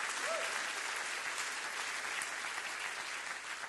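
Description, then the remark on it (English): An audience claps steadily together to thank God for marriage in America, a dense, even wash of applause that holds at a constant level for the whole stretch, with no voices standing out above it. “Clap your hands and say thank God for marriage in America today.”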